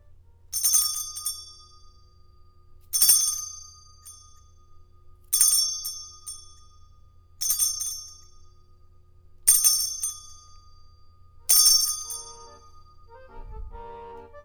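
A bright, ringing bell chime strikes six times at a steady, unhurried pace, each ring clear, letting its shimmer decay before the next; a soft thump and faint tones follow at the end.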